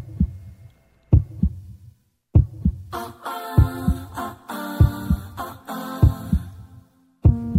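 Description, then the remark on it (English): Deep, thudding heartbeat sound effect in steady double-thump pairs, about one beat per second, opening a new song alone before synth music swells in around and over the pulse. “Well, I'll give you my thoughts on the sound effect.”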